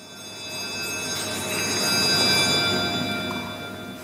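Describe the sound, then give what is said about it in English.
The House of Commons bell in London rings continuously for several seconds just after 2:30 in the afternoon, ushering a moment of silence in honour of Sir David Amos; a steady metallic clangour with sustained tones, loud and reverberant, with no voices. “The Commons bell rang just after 2:30 in the afternoon to usher a moment of silence in honour of Sir David Amos.”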